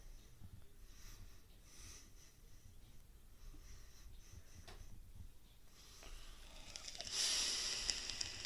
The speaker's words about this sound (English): Are you two saying anything? Oh, brilliant. That's great, isn't it? We're letting everyone tune in on your breathing. Which is even worse with headphones on.